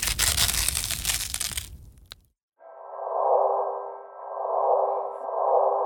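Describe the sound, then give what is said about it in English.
A burst of crunching, crackling noise cuts off, then a hollow, band-limited drone rises in, swelling and fading in slow, heartbeat-like pulses: a gravitational-wave signal captured by LIGO from an event involving two black holes, rendered as sound. “It's almost like the heartbeat of the universe. Now, what's really cool about this sound effect is this was actually captured by a group known as LIGO.”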